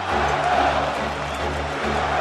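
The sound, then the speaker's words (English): A large baseball stadium crowd roars and chants the name of player Marco Scudero together, a dense, steady wall of voices that holds at a constant loud level for the whole stretch. “You hear the crowd chanting Marco Scudero.”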